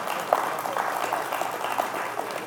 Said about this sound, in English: That's five people clapping. I really appreciate that.